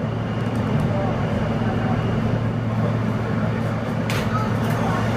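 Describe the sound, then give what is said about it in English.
A steady, loud low rumble and drone of a Manhattan-bound F subway train running via the E line toward Queens Plaza, rolling along underground, with constant mechanical hum and faint high squeals and clatter near the end. “This is a Manhattan-bound F train via the E line.”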